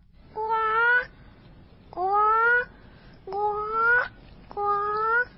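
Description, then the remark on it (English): A child's voice imitates a bird call with four loud, squawking, slightly rising cries, evenly spaced, each lasting under a second, with brief quiet gaps between them. “Can you make a bird sound”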